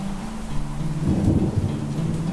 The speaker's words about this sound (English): the storms that were exciting to bring that cooling effect and just that noise, that rush, that excitement you get before a thunderstorm